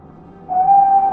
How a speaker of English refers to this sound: Can you hear it? The playful choo-choo of a train. It's almost like a song, isn't it? This sound, so full of joy and energy, came from the steam engines releasing steam in cheerful, rhythmic puffs.